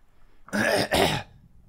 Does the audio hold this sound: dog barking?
no